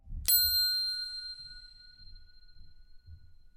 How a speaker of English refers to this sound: At the sound of the bell, we begin the spell.